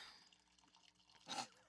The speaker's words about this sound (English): Interlude while she pours.